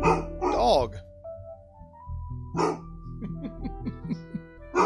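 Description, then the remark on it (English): A dog barks loudly, two sharp outbursts a couple of seconds apart, followed by a run of shorter yips and whines, with faint voices in the background. “Here's my dog.”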